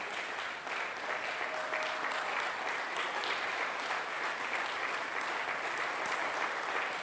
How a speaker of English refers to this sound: I thought that the gentlemen here would want to put their hands together for the ladies. I forgot. It's not loud enough. I don't know if you stand up and clap for the ladies as well.